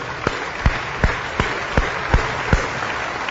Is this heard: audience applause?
yes